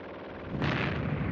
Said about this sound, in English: Incoming mortar fire!